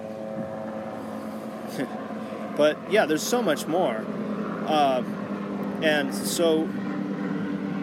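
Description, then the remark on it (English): A helicopter drones steadily overhead for the whole stretch, a constant engine hum in the background while someone talks over it. “Mind the helicopter here. Hopefully it doesn't come through too much.”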